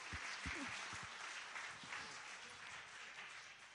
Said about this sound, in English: We'll give you a little round of applause for that. Well done.